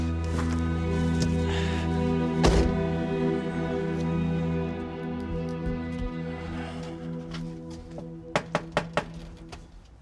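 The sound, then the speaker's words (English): Four quick, evenly spaced knocks on the door of a deserted-looking house on a rural property near Prague land near the end, sharp, over a steady low engine-like hum that runs throughout. “Here, I'll go knock.”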